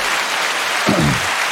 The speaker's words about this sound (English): Could you hit that applause button one more time?